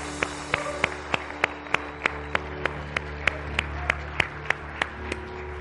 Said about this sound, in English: And everybody give a big old hand clap to the Lord for those four that got right with God.